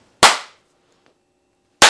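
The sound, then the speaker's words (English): Two loud, sharp hand claps marking the start of a recording take for Swag Sessions, about a second and a half apart, each a crisp snap with a brief ringing tail, separated by near silence. The second clap is cut off at the end. “Oh, wait, I didn't do the claps.”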